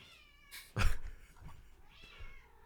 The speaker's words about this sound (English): Hold on, I need this cat to shut up.